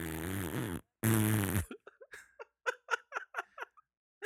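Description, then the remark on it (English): A man blows two loud, buzzy fart noises with his mouth as a joke, one wobbling and one harsher, followed by a run of short, breathy giggles as he laughs at himself. “made himself laugh on fart noises.”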